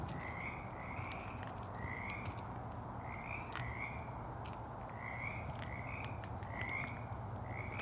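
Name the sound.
frogs croaking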